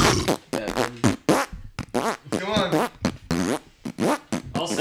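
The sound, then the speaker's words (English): A rapid, rhythmic string of loud fart noises strung together like an a cappella rap verse, with pitch wobbling from burst to burst and no instruments behind them. “Acapella fart rap version one.”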